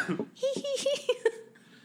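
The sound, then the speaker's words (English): A person imitates a strained, painful-sounding coughing laugh: a quick run of about five choppy, voiced bursts that break up like coughs, then trailing off into quiet. “I want … the to try the coughing, the second one, the painful laugh.”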